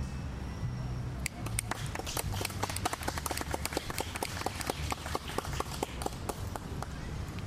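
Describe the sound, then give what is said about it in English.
A small crowd breaks into applause after a poem is read, a scattered burst of claps and finger snaps that starts suddenly and keeps going at a steady, lively pace, moderately loud. “Yeah, you can clap. You can snap too.”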